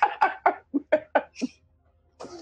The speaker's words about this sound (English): I started coughing.